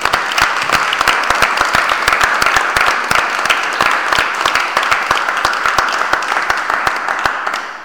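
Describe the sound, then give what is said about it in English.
An audience at a church applauds to thank the people who prepared and gave teaching on the fruit of the Holy Spirit: a dense, steady wash of many hands clapping, loud and continuous for several seconds, easing slightly at the very end, with no talking over it. “Let's just give those guys a round of applause.”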